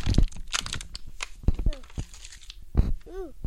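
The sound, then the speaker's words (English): Rustling and crinkling of paper packaging, with sharp tearing bursts and crunches scattered through, plus a brief high whistle-like chirp near the end and some background voices. “Oh, the paper.”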